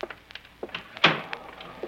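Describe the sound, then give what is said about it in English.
A door is pushed shut with a solid thunk about halfway through, preceded by faint shuffling and light knocks, with a small clack near the end. No one speaks. “Shut the door.”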